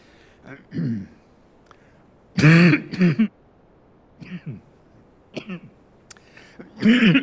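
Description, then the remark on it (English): A person clears their throat and coughs several times, short harsh bursts spaced irregularly, with a couple of louder, deeper coughs standing out, alone without talk. “I'm going to take this off and cough in a second here.”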